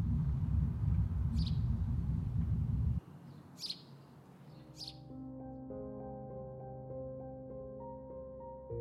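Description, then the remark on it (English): A lone bird at Camp Dwyer gives three short, high chirps spaced a second or two apart as the sun crests the horizon, first over a heavy low rumble, then against quiet, sustained musical tones. “Camp Dwyer is dirt, rocks, and danger. And one bird.”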